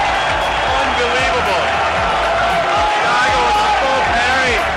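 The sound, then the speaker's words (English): A loud, dense tournament crowd roars and shouts nonstop, many voices overlapping into a steady wall of cheering with scattered thumps and claps throughout, reacting to a parry of the last hit from the air in a match between Wong and Umehara. “And everyone just starts going crazy and wild.”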